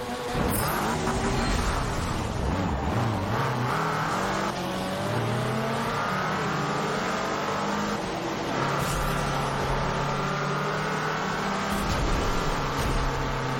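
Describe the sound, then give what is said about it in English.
A car engine revs continuously, its pitch sweeping up and down through repeated accelerations, loud with a synthetic quality and no talking: a car's turbo charge in a racing video game. “That's your turbo charge thing.”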